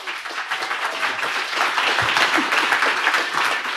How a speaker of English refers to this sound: Everybody, give a round of applause for the Elixir Outlaws.